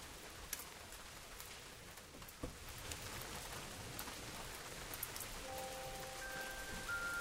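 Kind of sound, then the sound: nature, rain falling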